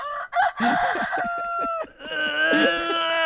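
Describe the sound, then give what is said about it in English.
A voice imitates a rooster's cock-a-doodle-doo, one loud, drawn-out crow with a wavering pitch lasting about three seconds, rising into a strained, nasal final note. “Give me a rooster.”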